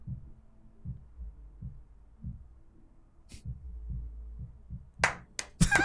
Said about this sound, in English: The only sound is the dude's music next door.